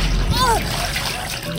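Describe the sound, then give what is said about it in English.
Water splashes and sloshes in a short, loud burst as a woman is pulled out of the water by hands, with dripping and churning that continue. “it's only then that their hands pull her out of the water.”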